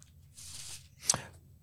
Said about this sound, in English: I'm going to give a good old Vegas shuffle.